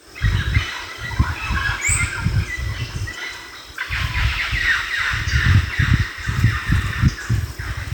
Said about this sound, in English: This is some audio I took of the mealy parrots calling while we were trying to spot them.